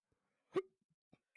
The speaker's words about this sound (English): Sound like that nigga got the hiccups. I did.